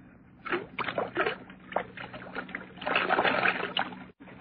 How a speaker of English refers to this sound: There's the whiskey, still half full. Pour most of it out, so that it will look as though we had even more to drink.